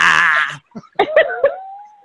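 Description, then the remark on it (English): A goat lets out a loud, nasal bleat with a buzzing, wavering tone, followed by a few shorter, higher-pitched bleating cries that trail off. “Why does the goat sound like Bill Cosby?”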